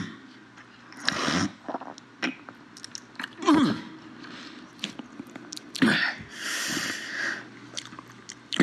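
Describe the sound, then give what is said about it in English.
A phlegmy snort from Bernie amid wet mouth sounds: lip smacks, clicks, lips parting and sticky saliva noises, with a few louder breathy bursts scattered irregularly over several seconds and no talking. “Just this week, the Biden campaign added this phlegmy snort from Bernie himself to their website.”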